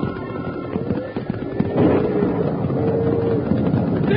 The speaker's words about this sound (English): But just then, a big crack of thunder spooked the cattle and a stampede was on, with Jingles right in the path of a big steer gone mad.